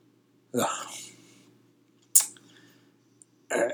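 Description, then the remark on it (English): A voice makes a breathy, sputtering fart-like raspberry with the mouth, fairly loud, followed by a sharp click and a second shorter sputter near the end. “Did you hear my fart sound? I did hear your fart sound.”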